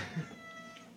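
A cat lets out a single short meow, a clear tonal call over faint background noise with no talking.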